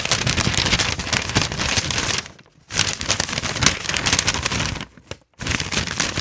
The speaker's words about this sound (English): I'm just rustling papers in front of the microphone. I wasn't actually getting notes. I wasn't getting notes. I was lying to you.